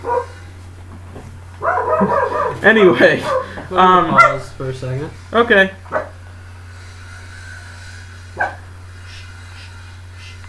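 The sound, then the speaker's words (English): A dog on a leash gives a quick run of excited barks and yips over a couple of seconds, mixed with people talking, then it falls mostly quiet apart from a steady low hum. “This is a sweet dog.”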